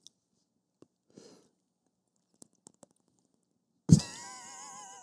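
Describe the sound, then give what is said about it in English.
Scattered small wet mouth clicks and taps, then a sudden loud slurp that trails into a wavering, squeaky whistle-like tone as a person drinks water, like a hamster sipping from a water bottle. No talking. “It was like a I fucking hamster yes. when they like go to the little, right. their little hamster.”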